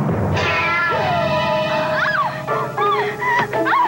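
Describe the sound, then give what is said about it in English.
A cat yowls loudly as it is hurled into a woman's face in the back seat of a car, a long rising-and-falling wail followed by several sharp, shorter cries in quick succession, with no voices. “She gets in the back seat of the car, and a cat is literally hurled in her face.”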